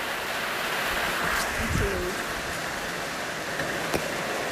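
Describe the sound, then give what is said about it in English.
Rain falls outdoors while the sun is out, in a steady, dense hiss that holds at an even level throughout, with a brief faint murmur partway through and a soft tick near the end. “Is that rain?”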